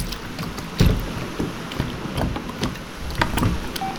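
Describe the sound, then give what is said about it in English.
Oars of a small boat dipping and splashing through water in a steady, uneven rhythm, with soft wooden knocks and a rushing outdoor hiss of wind, and no voices. “Why do I feel like I'm the only one rowing for the past hour?”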